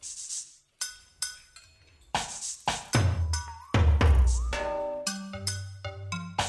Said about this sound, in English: You hear that? That's spooky. Someone banging on a glass.